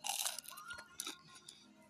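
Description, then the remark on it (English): Crunchy chewing of a crisp little brown wafer, about the size of an Alka-Seltzer, chewed with a meal: a quick series of sharp, brittle crunches followed by softer munching, fairly quiet and with no talking. “I have these little wafers that I have to chew on when I eat.”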